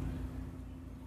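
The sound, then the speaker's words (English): A voice imitates a car engine while pretending to drive a car, with a steady, low, buzzing rumble held for about a second, fairly quiet, with no clear words. “I'm just driving a car.”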